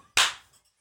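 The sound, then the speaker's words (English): A single sharp hand clap of praise bursts out bright and loud, its crisp smack fading quickly, followed by a faint softer tap. “I'm just going to give a hand clap of praise real quick.”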